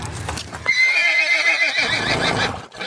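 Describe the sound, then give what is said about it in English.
A horse whinnies loudly with a long, wavering neigh while hooves clip-clop steadily underneath, with no voices. “Well, we hurriedly saddled our horses.”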